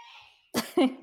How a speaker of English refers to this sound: Oh, who's sneezing over there? Oh, that's my fiance. Sorry.